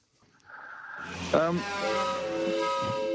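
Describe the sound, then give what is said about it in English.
Sirens from three passing fire trucks and an ambulance in Auckland swell in after a quiet opening, their wailing tones sweeping upward and then holding steady and loud over a low traffic rumble. “No, I reckon we got three trucks and an ambulance there.”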